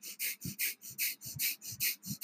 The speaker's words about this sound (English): Breath of fire, the way that I was taught, is it's kind of like panting. So panting like a dog, but then you'll seal your lips. So you'll actually be panting through your nose.